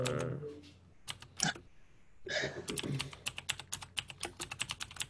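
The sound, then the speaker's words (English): Rapid, loud clacking of a computer keyboard, with a burst of keystrokes early on and then a steady run of sharp key presses toward the end. “That's some loud typing.”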